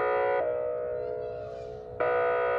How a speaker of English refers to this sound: In Cannon Beach, they had the siren go off, and I had never heard this before. The tsunami warning in Cannon Beach.